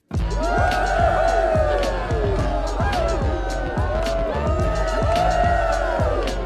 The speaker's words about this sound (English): But before we move on, let's just go ahead and give a big round of applause to the douchebags we have acknowledged today.